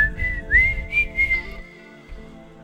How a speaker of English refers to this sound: Come on, man. That's one of the finest whistling tunes there has ever been. Oh, yeah. Just a classic. Classic. Epic.